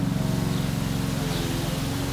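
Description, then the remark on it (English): A lawnmower engine drones steadily a few doors away, mowing wet grass on a grey, still Sunday afternoon: a continuous low, buzzing hum with a slight pulsing rhythm and no pauses or voices. “A lawnmower at a distance is a beautiful thing on a grey Sunday afternoon.”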